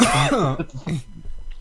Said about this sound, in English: You done coughing into the mic? Sorry.